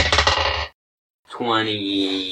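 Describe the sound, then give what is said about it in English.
Dice clatter and rattle across a hard tabletop in a quick burst of sharp clicks, then silence before a voice starts talking. “He's throwing 2 dice.”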